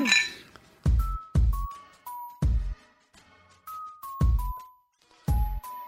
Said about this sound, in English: I mean, we have to cheers. We have to cheers. Cheers to it, girl.